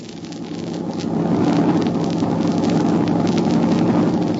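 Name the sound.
truck engine driving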